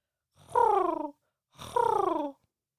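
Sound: voice imitating pigeon cooing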